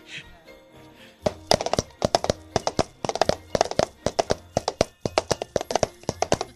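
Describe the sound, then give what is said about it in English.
Rapid rhythmic tapping, crisp, mimics horse hooves clip-clopping in uneven galloping clusters, starting after a brief quiet moment and continuing steadily to the end. “Sometimes my horse trips a little.”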